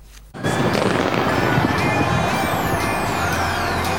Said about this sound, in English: New Year's Eve celebrations have been dampened by COVID. Sydney's iconic fireworks display went ahead without the crowds.